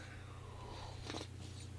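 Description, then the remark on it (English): A single short, soft slurping sip of coffee about a second in, over a quiet background hum with no talking. “And that's what we're going to do after I take another sip of coffee.”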